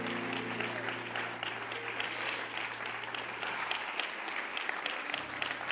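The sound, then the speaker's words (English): An audience claps hands unto the Lord during a sermon, steadily for several seconds, a dense, even patter of many palms, with a low sustained tone, like an organ note, humming underneath. “Oh, clap your hands unto the Lord right now.”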